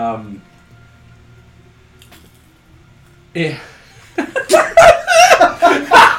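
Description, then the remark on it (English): After a quiet stretch, a sudden breathy sneeze bursts out, followed by a run of loud, choppy, laughing vocal sounds that keep going to the end. “Are you, was that really, that was a sneeze, right?”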